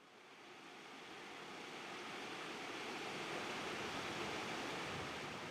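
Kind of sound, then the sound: ambience, rushing river water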